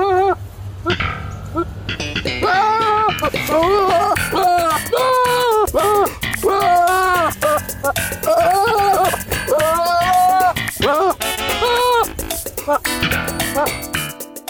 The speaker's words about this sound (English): So basically, the TikTok user basically said that they edited the sounds of the goats in quick succession to make it sound like Jerry.